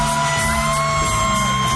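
A concert crowd at the Ryman Auditorium in Nashville cheers wildly at a surprise special guest, in a loud, unbroken roar, with yells and whoops rising out of a dense wash of noise and a few steady tones held underneath.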